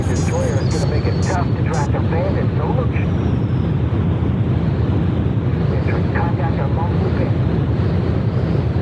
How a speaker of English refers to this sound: Okay, this is some kind of jet plane thing. It is a jet plane thing.